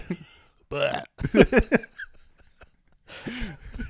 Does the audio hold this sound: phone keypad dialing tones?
no